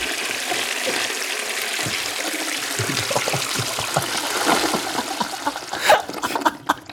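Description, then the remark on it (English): A toilet flushing: a loud rush of swirling water that gurgles and splashes for several seconds, ending in sputtering drains. No one speaks. “You got to flush it.”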